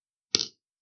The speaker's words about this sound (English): would you like to throw the dice? Three. I'm going to have a three.